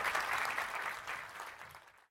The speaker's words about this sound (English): Give him a quick clap, because that's important.